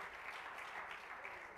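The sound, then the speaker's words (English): A church audience claps their hands in praise of God, a dense, steady wash of applause that carries on evenly throughout, with no voices standing out. “Oh, let's clap our hands again and praise Him.”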